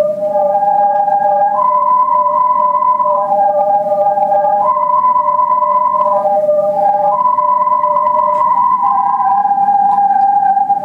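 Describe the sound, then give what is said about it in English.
A film sound effect for the big towers in the film that presage the coming storm: a loud, steady two-tone wail that alternates between a lower and a higher pitch every second or so, over a low rumbling bed, with no voices. “and then the towers as well, you know, the big towers, because they're sort of a part of the storm, they are the sort of a presaging of the storm that's to come. So I'll give you a quick idea of what these sound like.”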